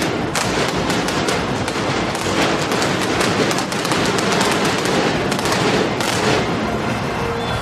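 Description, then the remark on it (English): Rapid, crackling bursts of arena pyrotechnic fireworks pop and bang continuously, dense and loud, celebrating a new World Heavyweight Champion, with a roaring crowd-like wash underneath and no one speaking. “But let's listen to the fireworks.”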